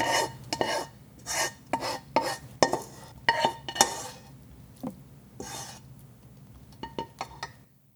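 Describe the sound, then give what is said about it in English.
The lid of a metal pot of chicken cooking with spices is opened, then a utensil scrapes and clinks as it stirs in short uneven strokes, with occasional lid clatter, over a low steady hum. No one speaks. “I frequently open up the lid to check and stir, which makes the process even longer.”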